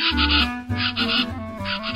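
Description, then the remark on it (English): Loud, raucous calls of a plain chachalaca (Ortalis vetula) repeat in harsh, rhythmic bursts, continuous over two seconds, with no voices. “It's today's Talkin' Birds featured feathered friend, Ortalis vetula, the plain chachalaca.”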